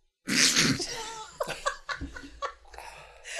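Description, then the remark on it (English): A sudden, loud sneeze bursts out, followed by a few short, breathy chuckles or snorts trailing off. “Try not to sneeze.”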